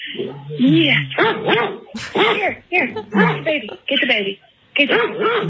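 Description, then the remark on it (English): A male puppy, heard over a phone call, yips, whines and barks in a rapid string of high, squeaky bursts, fairly loud, with only brief pauses between its vocal outbursts. “And he's talking. It's hard having a puppy.”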